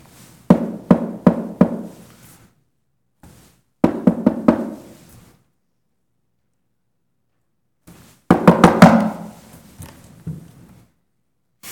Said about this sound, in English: I've been standing there knocking and knocking and knocking and knocking.